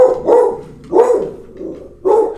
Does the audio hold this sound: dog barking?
yes